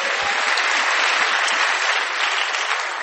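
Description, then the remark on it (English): A church crowd applauds for Jesus, many hands clapping in a dense, even roar that holds at a strong level for about three seconds with no voices standing out. “Clap for Jesus.”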